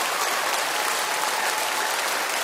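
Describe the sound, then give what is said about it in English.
A church audience at its Lakewood campus applauds a woman, released from prison, who is seated in the front row: a dense, steady wash of many hands clapping at once, loud and sustained without pause for the full stretch, with no voices standing out. “Can you guys give her such an awesome round of applause?”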